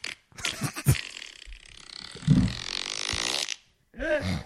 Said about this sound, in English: Big Bomber Fart Surprise, Nice Net Wet One, and More Than Expected.